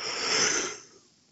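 A single breath picked up close to the microphone, a breathy rush of air that swells, then fades away over about a second, with no talking.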